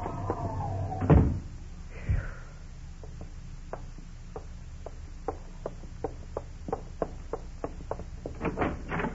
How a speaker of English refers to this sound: All right. I'll open the door for you.